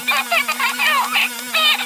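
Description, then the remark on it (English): A Star Wars porg toy lets out a string of shrill, strangled squawks in uneven bursts, like a dying chicken, over a steady low electronic hum. No one speaks. “It just sounds like a dying chicken or something.”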